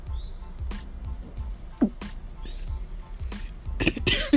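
A few harsh coughs from someone getting over a cold burst out, one sharp hack midway, then a rougher cluster at the end, with faint murmuring in between.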